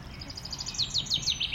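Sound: sparrow chirping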